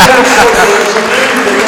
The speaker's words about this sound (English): listen to that applause for that. Fantastic crowd, 9,511.